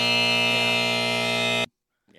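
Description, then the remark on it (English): A loud, harsh electronic buzzer blares steadily for about a second and a half, then cuts off abruptly into silence, with faint movement near the end. “When he said he thought he made the best decision, that was what the buzzer was for.”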